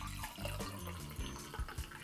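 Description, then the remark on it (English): Wine pours steadily from a decanter into a big wine glass, a continuous liquid stream broken by a few soft glugs toward the end, with no one speaking. “So let's have a listen to the pour, right?”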